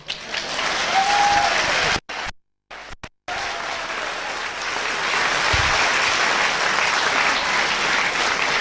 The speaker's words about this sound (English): And usually, when I come on a platform, I usually get a real big round of applause.